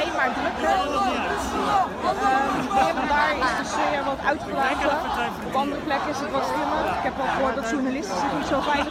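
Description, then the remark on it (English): A sizable crowd of people, presumed to be Turkish nationals, waving Turkish flags in a street in a Dutch city, murmuring and chattering, many overlapping voices blending into a steady, dense babble that holds at an even loudness throughout. “Okay, and then we got just a crowd of Turkish nationals, or who I presume to be Turkish nationals, waving Turkish flags.”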